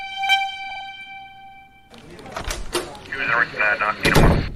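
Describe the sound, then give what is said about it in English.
A door is flung open abruptly without knocking, with a loud clatter and thump that cuts in after a steady sustained tone, followed by shuffling movement and another sharp bang near the end. “By all means, please come right in and don't bother to knock.”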